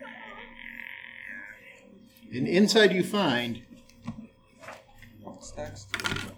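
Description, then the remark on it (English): A voice imitates a heavy iron door creaking open after its lock is picked, a loud, drawn-out, croaking groan lasting about a second, followed by a person speaking briefly. “You open the iron door. Creaks open.”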